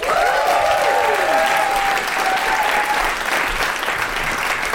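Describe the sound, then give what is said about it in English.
Loud, sustained applause from a live audience, a dense steady wash of clapping lasting the whole stretch, with a few faint whoops and cheers rising over it early on. “And the eagle-eared of you listening at home will have worked out that there are other people in the room with us because we are at the London Podcast Festival, no less.”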